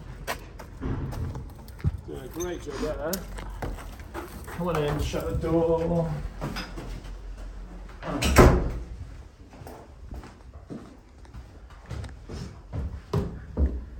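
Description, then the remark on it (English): A door opens with a single sharp thud midway through as someone enters, while people chat before and after it. “Come on in, shut the door.”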